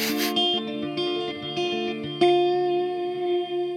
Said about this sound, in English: Yes, this is a dual reverb. There are 2 channels of reverb that you can deploy simultaneously.